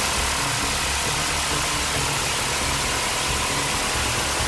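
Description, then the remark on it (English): HMLA 267 Stingers military helicopters taking off in tandem on a hunter-killer mission, heard as a loud, steady engine roar with a dense hiss over a low droning hum, continuous throughout with no voices. “Here, HMLA 267 Stingers take off in tandem on a hunter-killer mission.”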